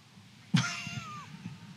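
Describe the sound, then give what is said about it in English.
A cat that a child is playing with lets out a single drawn-out meow that falls in pitch, fairly clear, over a low background rumble with no one speaking. “He's so happy that he's playing with that cat right now.”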